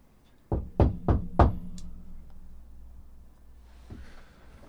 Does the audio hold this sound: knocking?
yes